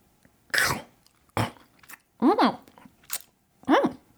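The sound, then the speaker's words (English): A voice imitates crunchy chewing of a barbecued grasshopper: several loud mouth crunches and smacks in an uneven rhythm, some with a voiced, mumbling quality, each separated by short pauses. “Crunchy! Croquant!”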